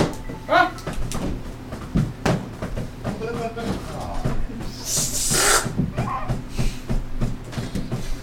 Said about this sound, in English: Blown up another balloon.